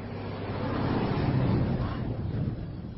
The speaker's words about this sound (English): One hell of a big truck. What is Orinco, anyway? Factory in Orrington. Chemical fertilizer.